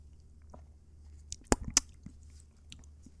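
Quiet mouth sounds of someone sipping a bubblegum-flavored G Fuel energy drink, with a couple of sharp wet clicks and gulps over a low background hum, and no talking.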